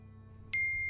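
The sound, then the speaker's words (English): A phone chime for an incoming voice message sounds abruptly halfway through, a single bright electronic tone that rings on steadily over a faint low hum, fairly clear. “My phone chimed, indicating I had another voice message, but I didn't hear it ring at all.”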